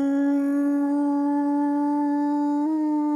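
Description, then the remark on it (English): A voice imitates a whale call with one long, steady, tonal moan held for about three seconds, rising slightly in pitch near the end. It is loud and strongly harmonic, with no talk over it. “Yeah, my whale impression, yeah.”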